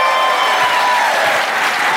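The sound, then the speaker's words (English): A large crowd applauds steadily, a dense, continuous wash of clapping that stays loud and even throughout, with no voices standing out above it. “Oh my God, this is a really big crowd.”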